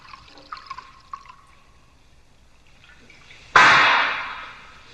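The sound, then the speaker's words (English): A few faint clinks of glass, then after a quiet pause, wine is poured into a glass in a loud, steady gush that gradually thins out. “I'm pleased you appreciate good wine. Have another glass.”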